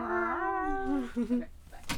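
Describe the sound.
A person imitates a crying cat, a drawn-out wavering yowl that slides up and down before breaking into a couple of shorter whiny meows, fairly loud.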